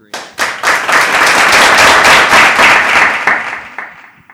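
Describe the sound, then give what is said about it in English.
A crowd breaks into loud applause, dense overlapping clapping that swells quickly, holds steady for a few seconds, then thins out as individual claps trail off at the end. “There's even a crowd on this mountain. You know, they really like what we're doing.”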